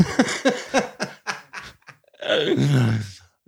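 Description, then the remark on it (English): An excited dog lets out a quick rhythmic series of short huffing yips, then a long, drawn-out whining groan that slides downward in pitch, with no one talking. “my dog is getting all crazy over here.”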